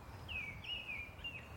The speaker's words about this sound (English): We've paused by a small, dark pool to listen to the wistful song of a male mistle thrush.